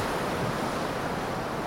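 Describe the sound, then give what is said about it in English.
Ocean waves breaking in a steady, broad rushing roar, hissing and constant throughout the short stretch with no distinct pauses and no voices. “Just astern, an enormous, glassy wave, higher than the masts of the ship, was about to break.”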